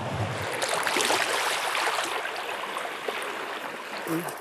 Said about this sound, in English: The waves come and wash the pebbles out. I mean, they completely clear this so there's bare rock underneath. And then the next day, the waves will bring a big pile of rocks here.